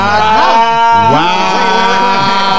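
A cow moos loudly, a drawn-out, wavering low call that rises and falls in pitch over a couple of seconds, with no one talking.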